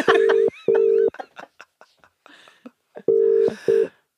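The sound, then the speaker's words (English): Long, steady telephone tones sound as a number is dialed: two beeps, a gap filled with brief talking, then two more beeps, the tones loud and flat in pitch. “Shall I dial the number?”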